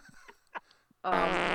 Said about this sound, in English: Farting always brings you guys back together and happy. It does. Farting is such sweet sorrow.